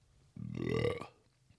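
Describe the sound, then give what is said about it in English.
A single deep, drawn-out burp, fairly loud, lasting under a second with a rough, voiced rumble, and no talking around it. “If I may, I need to burp 3 seconds ago.”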